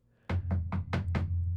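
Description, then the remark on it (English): Five quick, firm knocks on a door, evenly paced with a slight pause before the last two, fairly loud over a low steady hum. “And then there's a fucking knock on the door.”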